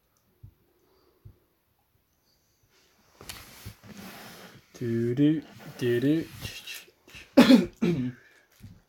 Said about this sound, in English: Cough.